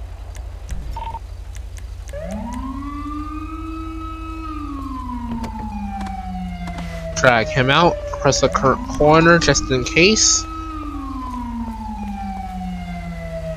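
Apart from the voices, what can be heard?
ambulance siren approaching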